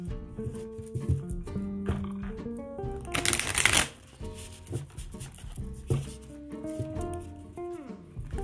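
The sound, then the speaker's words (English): Tarot cards being shuffled, with a crisp, loud riffle burst midway and softer shuffling around it, all over steady background music. “Shuffle these cards real quick.”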